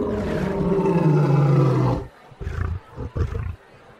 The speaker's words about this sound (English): Now he's inched ever so slowly toward the lion cage, and as he gets close to the cage, right on cue, the lion roars.